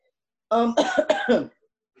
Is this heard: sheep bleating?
no